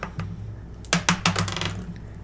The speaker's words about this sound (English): Well, I got a 6, mm-hmm. I got a 1, and then I got a dice that fell in my lap. Reroll that die.